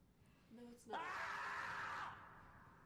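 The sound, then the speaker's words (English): A shrill, human-like scream from a groundhog rises suddenly and holds for about a second before cutting off, preceded by a short lower squeal, loud with faint background hiss. “all right, groundhog little groundhog screaming like humans here.”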